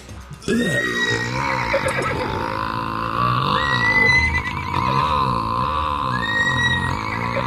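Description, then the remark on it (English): A long, loud belch after eating a horse hot dog, sounding like a horse's whinny, warbling and rising in pitch over about seven seconds, with no talking. “Wow, that's some horse gas right there.”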